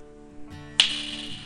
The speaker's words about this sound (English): I thought it might look a little too conspicuous at times, so just go ahead and intentionally snap your fingers.